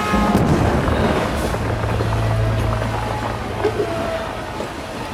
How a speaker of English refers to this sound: The train lurches, then crashes through the tunnel.